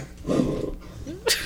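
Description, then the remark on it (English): A female dog named Snort vocalizes: a low, rough grumbling sound, then a brief rising whine and a short, sharper yelp-like burst near the end, with no talking. “Is that your dog?”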